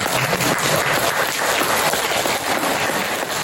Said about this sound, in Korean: 뭐 누구를 따로 하기보다는 더 우리 서로 다 좀 축하하는 데 비해서 옆에 분들한테 서로 보고 막 박수 한번 치십시오.